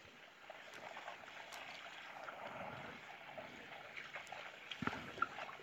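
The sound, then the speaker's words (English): Water at a rolling boil in a pot, a steady bubbling and hissing churn that runs throughout, with a few sharper pops and clinks near the end. No one speaks. “Over here, boiling.”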